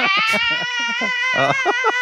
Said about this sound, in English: I like the mic manipulation for that scream. That was nice.